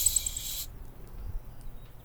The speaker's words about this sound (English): Hear that? Yeah, what is that? It's the Black Pole Warbler. I heard them in the Caribbean last year. Their migration route goes straight from the northeast to South America, and it is almost all over the open ocean.